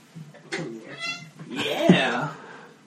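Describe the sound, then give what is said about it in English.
A cat meows a few times, with drawn-out, wavering cries that rise and fall, the loudest near the end, while a person talks softly in the background. “hey, baby, you want to come get on the podcast, little kitty?”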